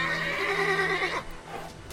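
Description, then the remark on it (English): A white horse lets out a single loud whinny lasting about a second, its wavering cry sliding down before fading into quieter snorting and movement. “You will ride off on this white horse, Silas.”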